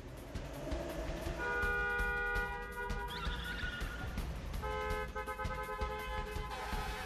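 A tow truck rumbles along while its horn blares in two long, sustained blasts over the steady engine noise.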